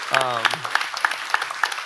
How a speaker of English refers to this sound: Yeah, let's clap her up. Please clap her up.